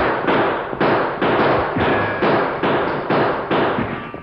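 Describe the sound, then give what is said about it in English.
A rapid volley of about nine loud gunshots fired by Clarabelle and Thunder at attackers, at a steady rhythm roughly twice per second, each sharp crack trailing off into a brief rumbling decay, with no voices. “Clarabelle and Thunder shoot at them, too.”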